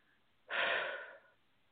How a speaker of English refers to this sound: I'm doing a lot of breathing. Apologize. It's moving stuff out.